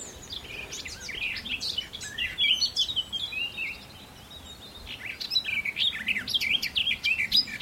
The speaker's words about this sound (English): This is garden warbler.